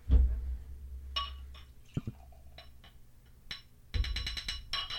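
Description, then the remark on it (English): Beer is poured into a glass, with bright glassy clinks and short bursts of fizzy splashing over a low rumble. No one speaks. “We get quiet when the pour goes.”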